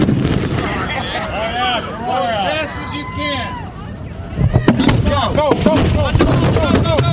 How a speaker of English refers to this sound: Meanwhile, the rest of the country will enjoy the fireworks.